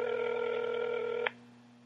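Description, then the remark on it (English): A steady, buzzy electronic telephone tone sounds for over a second while a call is placed, then cuts off abruptly, leaving only a faint low hum; the call goes unanswered. No one speaks. “Let's give him a call.”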